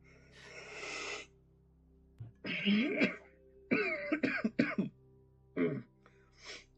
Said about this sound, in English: Coughing makes it worse.